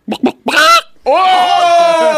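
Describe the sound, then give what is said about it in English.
A person imitates a chicken, giving a few quick, choppy clucks before breaking into one long, strained, squawking call, loud with no other talk. “Yo, there are chickens on a farm that would go, whoa, that guy can cluck better than”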